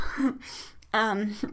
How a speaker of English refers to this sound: Like, I can't stop yawning. I'm gonna yawn right now. I'm really sorry.